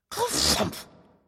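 A voice imitates a giant's creaky old bed as he falls into it: one short, breathy, groaning burst, fairly loud, that fades out quickly. There is no other talk.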